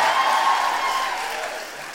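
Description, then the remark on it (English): A crowd applauds steadily, a dense wash of many hands clapping at once that tapers off slightly toward the end. No one speaks over it. “Your motivation to applaud is you think, oh, normally I'm listening to this on a tram.”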